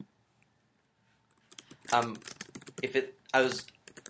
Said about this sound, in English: Just pardon our typing. Type softly.